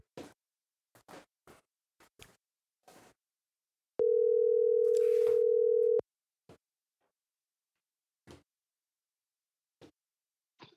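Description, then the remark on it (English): An outgoing phone call's ringing tone sounds once: a steady two-second electronic buzz, clear, with scattered faint clicks and taps before and after it and no voices. “Let's get Freddie Bricks on the phone. Hopefully he answers.”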